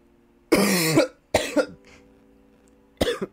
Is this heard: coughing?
yes